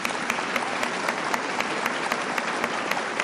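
A round of applause from a group, many hands clapping in a dense, steady wash with sharp individual claps standing out, holding at an even level throughout with no talking.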